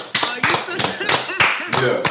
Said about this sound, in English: Let's just clap it up. Hold on.